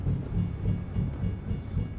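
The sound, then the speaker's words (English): A train in a truck-driving video game by SCS rumbles past a level crossing with triggered gates, with low, steady mechanical noise and a faint rhythmic pulsing, roughly every third of a second, with no voices. “Please, SCS, if you're listening, can we fix train mechanics, please?”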